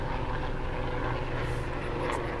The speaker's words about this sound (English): like, airplane moment. Oh, it's a helicopter. Hello. Oh, it's a helicopter. I forget helicopters exist.